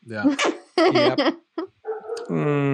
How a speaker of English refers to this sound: Oh, there's the dogs. I have got to go. I'm going to go feed my dogs now so I can clean up after them tomorrow.